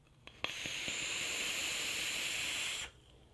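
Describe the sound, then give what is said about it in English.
A steady, bright hissing draw from a parallel unregulated box mod vape with a Recoil atomizer and 0.15 ohm dual Alien coils, vaping M-Turk Turkish blend, lasts about two and a half seconds, starting with a small click and cutting off abruptly. Fairly loud and even, with no voices. “Let me just take a pull on this.”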